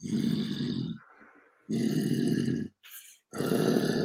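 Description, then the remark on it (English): A person growls like a wolf in three long, rough, throaty bursts, loud, with short gaps of breathy rasp between them and no speech, as part of a full-moon technique of rocking and growling. “Now my chest is really opened up from the growling, right?”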